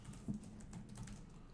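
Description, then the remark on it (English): Quiet, rapid clicking of a computer keyboard, a steady patter of keystrokes with one slightly heavier tap near the start, without any talking. “Typing in blue.”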